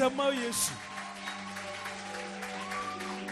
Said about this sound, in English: Praise the name of Jesus. Hallelujah. Can you give Jesus a resounding clap offering?